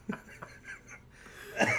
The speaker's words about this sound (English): Better pick up a case of the really dry coughs to make myself slightly more interesting, or at least super noticeable. More interesting. Right. Like no one can ignore you if I'm sick. Starts to cough right now.